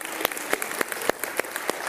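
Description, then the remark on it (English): Audience applause: a steady patter of hand claps with sharper, evenly spaced claps standing out, moderately loud, with no voices over it. “So a big round of applause for them.”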